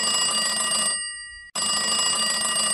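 A red telephone rings loudly in two bursts with a brief pause between them, a bright, buzzy bell-like trill with no voices.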